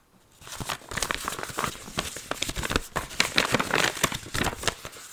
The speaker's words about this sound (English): Millie wrapped Molly's scarf in red paper and tied it with a big green bow.